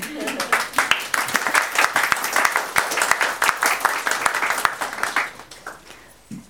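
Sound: audience applauding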